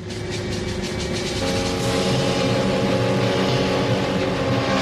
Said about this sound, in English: Okay, hold on. Stop. Everyone just stop shooting. Okay, just stop driving those bloody cars for a second.